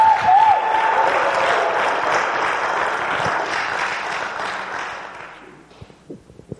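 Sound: audience applause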